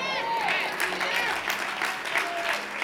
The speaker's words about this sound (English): See? This side was just one clap, so I need to put my foot on the gas a little more.